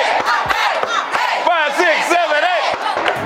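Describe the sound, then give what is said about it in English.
A crowd cheers and whoops loudly at a tap dance party in a subway station with a middle school group from Houston, Texas, high wavering shouts rising and falling over a steady clamor of many voices, with sharp bursts throughout. “What was going on with you and the crowd?”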